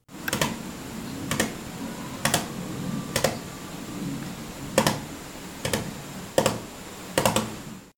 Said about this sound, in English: This is what a gerbil sounds like when it stamps its tiny feet.